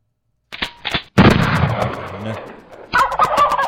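A loud gunshot blasts out and rumbles away at a turkey shoot, then more sharp reports crackle near the end as marksmen fire at released turkeys, with turkey-like gobbling and clattering mixed in and no talking.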